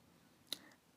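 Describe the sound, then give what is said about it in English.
A single sharp click of cameras hanging around passengers' necks knocking together as a bus goes over bumps or train tracks breaks a quiet background, followed by a faint brief rattle as it settles. No one speaks. “Whenever we go over bumps or train tracks, there's a tremendous mask clicking sound in here from all the cameras around everybody's neck.”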